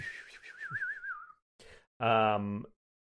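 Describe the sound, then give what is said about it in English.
A person whistles a wavering, slowly falling tone, mimicking a javelin flying across a crevasse, then a short breathy burst and a brief, loud voiced sound. “And a, let's see, a javelin whistles across the crevasse at you. Ooh, I like whistling.”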